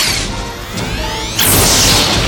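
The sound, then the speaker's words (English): A sci-fi energy weapon blast from an automated security defense at Dr. Mannheim's laboratory, striking Data: warbling, sweeping electronic tones build up, then erupt into a loud, hissing burst that sustains to the end. Forceful, with no voices. “Now data is being blasted by some automated defense.”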